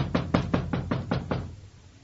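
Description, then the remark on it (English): A drunken American knocks on a door, demanding it be opened: a rapid series of six firm knocks, evenly spaced and fairly loud, followed by a brief quiet tail with no voices. “What do I have to do? Break this door in?”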